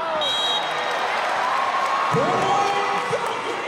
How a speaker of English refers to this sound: A boisterous crowd of nearly 5,300 newly minted fans cheered the Valkyries in their first match. a competitive battle against the Atlanta vibe.